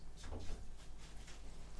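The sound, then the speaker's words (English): Someone handles and rattles a front door, trying to get through it, with a couple of short clunking bursts and a low thud amid quiet background rumble. No one speaks. “He's trying to get through the front door.”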